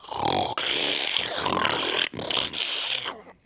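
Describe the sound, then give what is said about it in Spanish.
A voice imitates the loud snoring of a big man with sleep apnea, asleep on a dormitory floor in St. Thomas around 4 a.m.: three harsh, raspy, rattling snore sounds in a row, each broken by a brief pause. No other talking. “He had sleep apnea. Sí. Roncaba como un caballo.”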